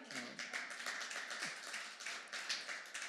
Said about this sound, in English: Thank you so much for clapping for yourselves.